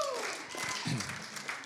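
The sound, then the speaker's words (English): A crowd claps together in a short, dense burst of applause, steady, with some voices rising over the clapping. “That deserves a hand clap.”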